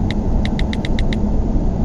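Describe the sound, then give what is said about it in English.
A town car's engine rumbles steadily from inside the vehicle as it drives a passenger toward his home, a dense low drone throughout, while a quick run of seven faint, evenly spaced high beeps sounds over the first second. “The town car was sanitized before pickup, I assume.”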